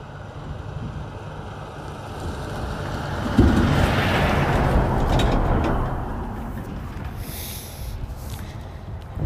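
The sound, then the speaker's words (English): A large tractor trailer drives past on a narrow local road: a heavy, low engine rumble with a broad wash of road noise that swells suddenly, holds for a few seconds, then eases off. Nobody speaks. “All right, so we're just going to hold up over here while large tractor trailer drives by.”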